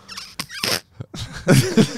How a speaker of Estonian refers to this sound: Mul oli vale soundboard. Mul oli mingi mul oli mingi peeru.